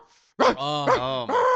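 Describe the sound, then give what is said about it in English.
A person imitates a small dog barking: three yappy, bark-like bursts run together over a whiny, sustained vocal tone, fairly loud. “This dog was literally just barking the entire time.”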